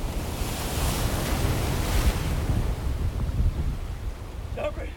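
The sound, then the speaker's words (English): Loud, steady roar of ocean surf with churning, rushing water that swells slightly midway, like a big wave breaking; a brief faint voice-like sound appears near the end. “Big wave coming through.”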